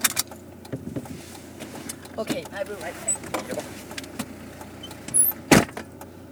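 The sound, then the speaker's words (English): Someone climbs into a car: rustling movement and shuffling clicks, then a loud door slam near the end, with muffled voices talking in the background. “Welcome to my trashy car.”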